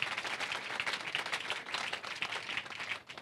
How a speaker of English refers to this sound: Clap for Jesus.